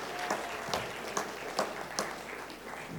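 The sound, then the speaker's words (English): An audience claps steadily, a dense wash of many hands with a few sharper, louder claps poking through the texture at irregular moments. No one speaks over it. “Yeah, you can clap.”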